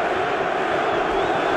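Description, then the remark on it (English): A huge stadium crowd of supporters at a Hungary national football team match, their biggest crowd for a competitive match in over 35 years, chants and roars in a dense, continuous wall of voices, loud and steady throughout with no break. “Their biggest crowd for a competitive match in over 35 years. The supporters are playing their part.”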